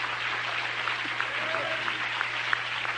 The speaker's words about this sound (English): Clap your hands and give Jesus praise for doing that.